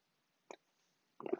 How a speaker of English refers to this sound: Coffee sip.